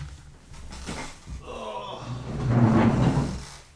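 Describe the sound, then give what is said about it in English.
A chair being shifted, with a few seconds of scraping, creaking and soft knocks that swell toward the end before settling. “Hold on, I gotta move this chair.”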